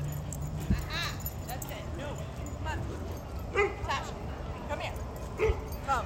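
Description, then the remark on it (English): A dog barks in short yips and whimpers, its high whines rising and falling between a few sharper barks, with a steady murmur of background noise and muffled voices of people reprimanding their dogs. “People reprimanding their dogs.”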